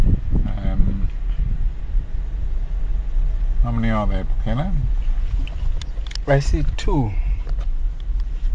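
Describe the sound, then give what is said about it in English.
A steady low rumble of idling engines from a number of cars stopped to watch wild animals hums in the background throughout, mixed with some wind noise, while people talk over it in the foreground. “You can probably hear some of them idling their engines in the background.”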